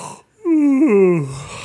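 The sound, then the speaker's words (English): A person lets out a long, voiced yawn, its pitch sliding downward as it fades over about a second. The yawn is fairly loud, with no talking around it. “Audible yawn.”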